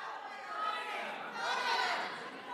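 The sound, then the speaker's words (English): An audience at a gig shouting out where they are from all at once, a dense jumble of overlapping voices with no single word standing out, loud and steady and swelling slightly in the second half. “Oh, shout out where you're from.”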